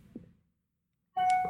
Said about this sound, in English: You keep beeping. More emails. Yeah, emails. You know, I'm a very popular person.